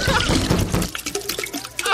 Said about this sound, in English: That's a good drip sound, like he's kind of pinching it.